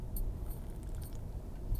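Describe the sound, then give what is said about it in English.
A quiet sip from a drink: soft wet mouth sounds and a few small clicks over a low background, with no talking. “Excuse me while I take a sip of the drink here.”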